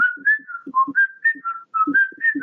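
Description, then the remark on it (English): A person whistles an imitation of the song of the jilguero (goldfinch), called the national bird, a lively run of bright, warbling notes that rise and dip in quick succession, punctuated by soft breathy puffs between phrases. “So the reason why the jiguiro is the national bird is because of the song.”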